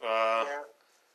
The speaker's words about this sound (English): Oh, you got a cat back there? Yeah, this cat's whiny.